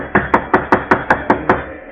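A rapid run of seven loud, sharp knocks on a wooden door by a man seeking shelter, knocking louder again, evenly spaced, with no voices.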